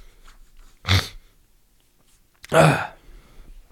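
Two loud sneezes from a person having a sneezing fit, each a sharp explosive burst, separated by a pause of about a second and a half, with no talking around them.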